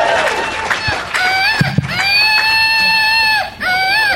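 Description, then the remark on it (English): A screaming flying monkey toy, a Woot Monkey from a prize bag, lets out shrill, harmonic-rich squeals: a few short rising cries, then one long sustained high scream, with another starting just as it ends. “That's the horrible noise it makes.”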